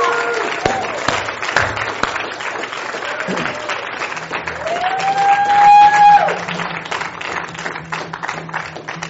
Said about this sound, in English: I think we should cheer them on. I think we should clap for them. I think we should hoot and holler and whistle if you need to. But let's just say, dads, job well done.